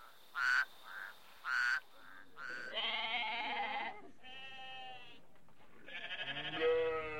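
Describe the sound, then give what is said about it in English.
Sheep bleat repeatedly: two short sharp calls at the start, then several longer, wavering, nasal bleats overlapping one another, moderately loud with no talking. “She sips her fresh-smelling coffee and then goes after the sheep.”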